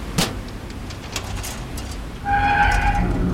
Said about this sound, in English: Let me see if I can... the container lock is just a truck seal, not a crossbar lock. I think I can get it open with my multi-tool. There.